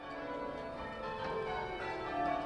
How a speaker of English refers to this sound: I get a lot of sense of accomplishment from being in the team of ringers. I love the sound of the bells